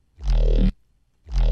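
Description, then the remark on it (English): Two loud bursts of a gritty, distorted synth bass growl with sawtooth-wave harmonics, shaped by a high pass filter, phaser and asymmetrical distortion; thick low end under a buzzing wash of harmonics, separated by a short silence, with no voices. “And then high pass filter. That's what really gets that growl going.”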